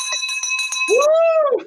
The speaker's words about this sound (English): Get ready for the school teacher bell yet again